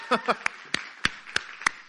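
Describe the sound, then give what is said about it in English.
Sparse audience clapping for people who have just prayed a prayer of commitment: a handful of sharp, scattered claps at uneven intervals, moderately loud, with a brief voiced sound near the start. “For the first time in like 8 weeks, we have some folks in here can actually clap. You might hear them clap for you.”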